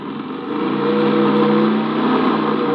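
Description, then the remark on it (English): A car engine revs up and pulls away, its steady rumble swelling in loudness and pitch over a few seconds. It is continuous, with no voices. “We can probably get back on the road now.”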